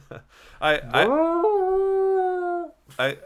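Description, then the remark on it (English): A voice imitates the Vikings' stadium horn with a coyote-like howl: short bursts, then a rising, wavering tone held for over a second before cutting off. It is fairly loud. “That sounds more like a coyote or something, but...”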